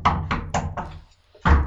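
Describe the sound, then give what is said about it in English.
Someone knocks on a door: four quick, evenly spaced raps, a short pause, then one louder, heavier knock. Fairly loud, with no voices. “Hey, can you see the door? There's someone at the door.”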